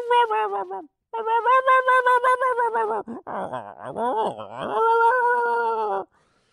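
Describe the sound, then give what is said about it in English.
A dog moans and whines in long, wavering, fairly high-pitched cries, with a short pause early on and a warbling, yodel-like stretch in the middle before a steady final whine. “That they'll tease the dog with a biscuit or dangle a kitten over its face dipped in gravy or something to entice the dog, and the dog starts moaning and whining and pangs of ecstasy.”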